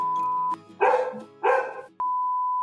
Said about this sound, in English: He has no respect. There's no respect, that dog.